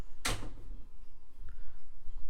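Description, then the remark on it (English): A door is blown open by the wind, banging once with a sudden, loud thud that rings out briefly, followed by a faint rattle and then quiet. “It was the wind. Oh. Yeah, don't you know the wind opens doors?”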